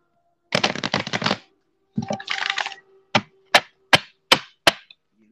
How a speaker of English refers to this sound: But I will shuffle the cards because people be like, he ain't got no cards.